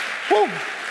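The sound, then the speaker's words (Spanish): An audience claps in a steady, dense wash of applause, and a short, gliding voice rises briefly above the clapping partway through. “Si lo quieres, dar un aplauso fuerte, Señor.”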